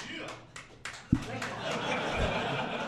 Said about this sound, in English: Just measure the applause. That's all you have to do. So of those three games, what would be your pick for Game of the Year right now? Who wants to applaud for Monster Hunter World?